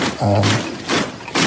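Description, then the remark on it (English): Someone knocking at a door: three dull, heavy thuds spaced unevenly, with a faint low murmur under the first one. “Oh, who's out of the door? I'll go and have a look.”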